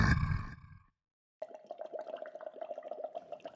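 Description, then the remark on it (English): A loud, rough monster scream with a deep rumbling roar bursts out briefly, then cuts off; after a short silence, a steady bubbling, gurgling watery sound follows. “And then the dreaded beast screamed at me.”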